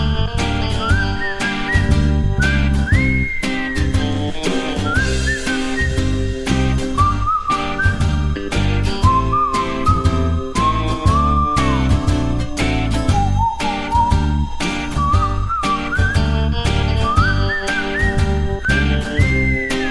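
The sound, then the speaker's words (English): A clear whistled melody, whistled by the composer, glides and bends over a dense, steady instrumental backing with a pulsing low end, giving an eerie, unsettling mood throughout, in a score cue from Welcome to Jersey. No one speaks. “This is a score cue, and I think this might be the one of me whistling.”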